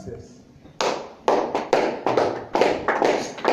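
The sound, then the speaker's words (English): After a quiet opening with a faint voice, an audience in a church breaks into loud, steady rhythmic clapping, about eight or nine crisp claps, each ringing out briefly before the next. “Oh, the way you are clapping, I feel like you are not in the house of God at all.”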